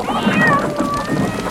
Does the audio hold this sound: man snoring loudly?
no